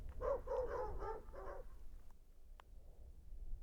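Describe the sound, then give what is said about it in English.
Faint, far-off dogs bark in rural Canada, a quick cluster of several yaps over the first second and a half, then fall quiet, leaving a low rumbling outdoor background with one brief click. “Then, more distantly, other dogs began to bark.”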